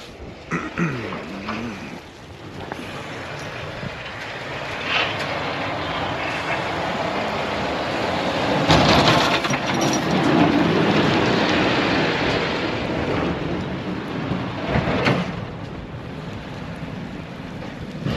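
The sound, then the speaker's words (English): A heavy snowplow truck rumbles past on a road, its broad engine and road noise swelling to a loud peak midway before easing off, with steady wind buffeting the microphone; it is not spreading sand at the moment. “All right, I'm definitely getting out of the way now because there is a plow coming.”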